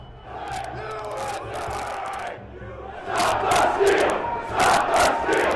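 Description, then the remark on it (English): A large, dense crowd of rioters shouting and yelling in a roar as they breach security and enter the Capitol through windows and doors, rising louder midway with overlapping cries and bursts of voices, chaotic with no clear words. “By 2:30, rioters breached security and made their way into the Capitol through windows and doors.”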